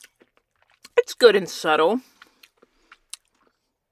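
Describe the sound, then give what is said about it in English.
Chewing of a Whoppers malted milk ball candy, with a handful of small, sharp crunches spread across the moment and a brief spoken remark in the middle. “What is the Whopper again? As I'm eating it. Malted milk balls.”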